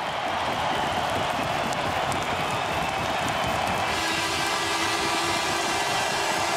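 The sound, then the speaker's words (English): A huge hockey arena crowd of 17,745 cheers in a loud, unbroken roar as the Edmonton Oilers close out a 5-2 win over Calgary in the Battle of Alberta, with faint steady tones rising through the noise partway through. “And now the crowd of 17,745 will bring you home.”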